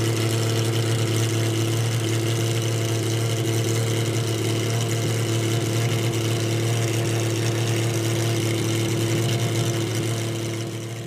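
A Lamborghini sports car engine roars loudly, holding a steady, droning pitch for about eleven seconds before easing off slightly at the end, with no one talking.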